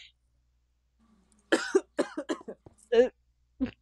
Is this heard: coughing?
yes